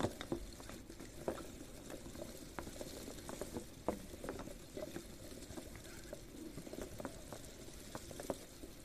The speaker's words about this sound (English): Imagine that this is the ocean, and the waves are coming in and out. All of the beautiful bubbles and fizzing.